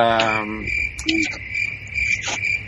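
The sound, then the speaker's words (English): A cricket sound effect inserted into a show: a steady, high cricket chirp runs continuously throughout, a sustained insect trill at moderate volume, with a brief low harmonic hum near the start and faint background noise beneath it. “Okay, Mike put cricket sounds in that spot right there.”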